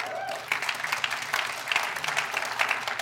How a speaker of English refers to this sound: And we have McMurray University with 1,073 students. Yeah. You can clap for that.